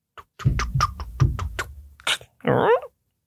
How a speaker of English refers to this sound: Uh-oh. Did you, is that a knock? At the door again?